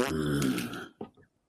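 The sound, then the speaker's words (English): A man, washing down pills with Mountain Dew, lets out a long, loud, low-pitched burp lasting nearly a second, followed by a couple of short, quieter guttural bursts before it trails off. “More burps.”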